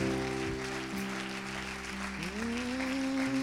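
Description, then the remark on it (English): An audience at a church service claps in a steady, dense wash of applause throughout, while sustained organ-like chords hold underneath and shift pitch partway through. “I want you to clap a little bit if you believe me.”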